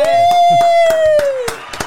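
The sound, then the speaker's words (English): About seven sharp hand claps made with the thumb, in the style of Louis Walsh, in an uneven rhythm, heard over a long, steady, high-pitched voiced tone that dips slightly at the end. The claps grow a little fainter toward the close. “Do you clap with your thumb?”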